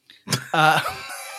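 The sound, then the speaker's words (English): A person imitates a hawk's squawk: a rough, throaty burst followed by a strained, nasal cry that trails off, with no other sounds around it. “Today I gave birth to a baby hawk. Seriously, respect my bird. Squawk, squawk, squawk.”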